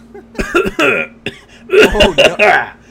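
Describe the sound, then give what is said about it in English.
Two loud bursts of harsh, chesty coughing, each a quick cluster of three or four hacks, separated by a brief pause with a short throat sound between them. “Is that a wet cough?”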